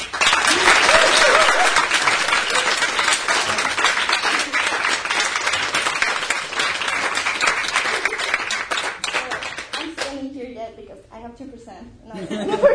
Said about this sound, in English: But you can keep clapping if you want.